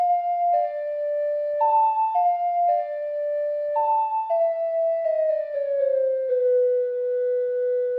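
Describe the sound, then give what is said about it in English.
A slow ocarina melody, the inverted Song of Time played in a video game to slow the clock, of pure, sustained notes stepping between a few pitches in a repeating pattern, ending on a long tone that sinks downward in pitch. No voices. “After resetting the clock, I played the inverted Song of Time.”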